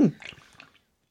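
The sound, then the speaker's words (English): A quick sip of beer: a brief low gulp at the start, then faint wet slurping and clicking sounds that fade out within a second, with no talking. “Sorry, I just took a sip of beer.”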